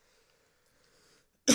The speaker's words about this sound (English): Oh, I coughed.